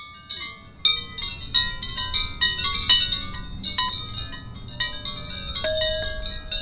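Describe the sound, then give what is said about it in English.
Several handheld chimes, carried by performers in a choreographed processional of 13 performers through a neighborhood, each holding a chime, ring out in irregular, overlapping strikes, bright metallic tones sustaining and shimmering over a steady low rumble, with no talking. “The performers are meant to meet en route in Cherokee Park to exchange chimes, then reassemble and claim their original chimes for the installation in Benton Park.”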